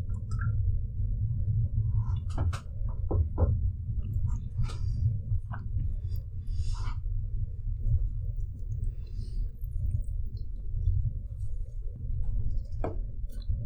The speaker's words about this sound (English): Hold on, I'm gonna wait till the train passes.